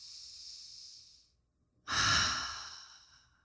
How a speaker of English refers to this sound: So why don't we all try that? Why don't we try taking one or two deep breaths together?